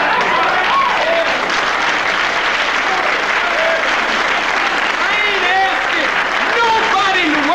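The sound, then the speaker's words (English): A large audience applauds loudly and steadily, the clapping dense and continuous from start to finish, with scattered cheers and shouting voices rising above it. “Applaud me. I don't give a damn about your applause.”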